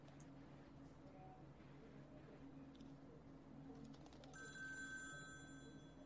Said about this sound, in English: Ring, ring, I'm on the phone now. Answer me because I'm Nicolas Cage as a phone.